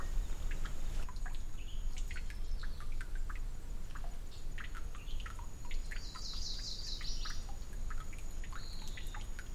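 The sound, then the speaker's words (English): Steady running water trickles and splashes in the desert, a continuous rushing wash with small bright drips, while birds chirp and tweet intermittently over it. No one speaks. “Oh, there's the water. I didn't even snap. Yep. Running water in the desert, y'all.”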